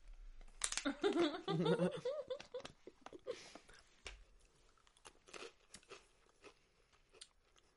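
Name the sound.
crunchy snack being chewed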